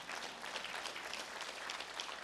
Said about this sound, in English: Y'all can clap on something like that now.